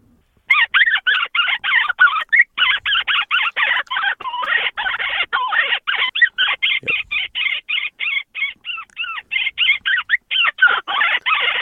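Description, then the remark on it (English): A predator call imitates a distressed bird: shrill, frantic squeals and chirps repeat in rapid, choppy bursts for the full stretch, loud, with no one talking. “And that Twitter bird, I don't know if I can do it on this one, but it sounds like.”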